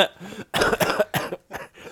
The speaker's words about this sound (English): I'm gonna cough all over you guys. I'm telling you. I can feel myself getting sick. Yeah, you think I'm kidding?